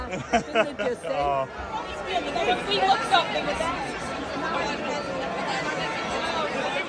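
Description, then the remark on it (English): Dense outdoor crowd chatter of football fans celebrating among flares going off, many overlapping voices forming a steady, loud babble with occasional shouts rising above the noisy hubbub. “Did you ever think you'd be, like, standing in a crowd of flares going off outside the Wednesday?”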